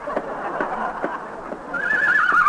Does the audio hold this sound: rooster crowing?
no